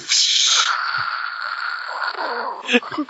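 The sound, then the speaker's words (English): A voice imitates spraying a nearly empty can of shaving cream, a steady breathy hiss lasting a few seconds and ending in a couple of sputtering, spitting bursts. “Freezer has a very unintimidating sound, like spraying a half-empty bottle of shaving cream or silly string.”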